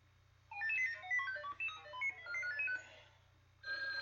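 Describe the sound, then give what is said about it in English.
A telephone rings with a bright electronic melody of quick chiming notes for a few seconds, pauses briefly, then starts ringing again over a steady low hum. No one speaks. “Oh, ring, ring. Hello, Jamie's dating service.”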